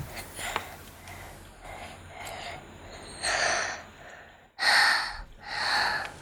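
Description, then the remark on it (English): Heavy, close-up breathing right against a microphone: softer breaths at first, then three loud, rushing exhales in quick succession near the end, with no talking. “Why are you heavy breathing into the mic?”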